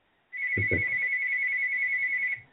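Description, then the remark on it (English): A mobile phone ringtone sounds as a loud, steady electronic tone that holds for about two seconds and then cuts off, with a couple of brief low thumps near its start and no talking. “Is that your phone ringing?”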